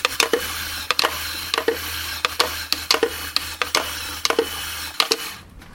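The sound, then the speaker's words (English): Music played on the lid of a pot noodle (a 'pot noodle drum'): a quick, uneven rhythm of scratchy, rasping strokes over a low steady hum, with no voices, stopping abruptly near the end. “The sound you just heard was being played, of course, on the lid of a pot noodle.”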